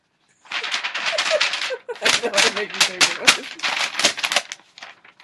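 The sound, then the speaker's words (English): Continuous paper rustling and crinkling, a dense run of crackly bursts for about five seconds with a brief pause partway through, fairly loud. “Yeah, I know I'm making paper noises.”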